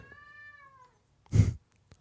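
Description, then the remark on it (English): A single drawn-out cat meow, fairly clear, followed after a brief pause by a short, harsh burst of noise, with no talking. “The cat and the dog have a love-hate relationship.”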